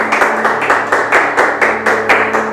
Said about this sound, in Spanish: ¿Cuántos dan un fuerte aplauso al Rey? En el nombre de Jesús. Gloria al Rey.